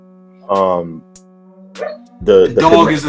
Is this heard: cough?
no